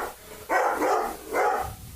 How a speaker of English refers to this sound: the racist dog, ladies and gentlemen, right there.